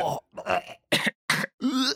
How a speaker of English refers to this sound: So I grabbed a bunch of people around the office, and we recorded ourselves gagging in lots of different ways.